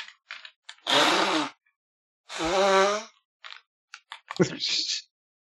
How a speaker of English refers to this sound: Jesus, did you blow it into a piece of loose leaf paper? I kind of did, because that's all I had. Jesus. A piece of white paper. Much better.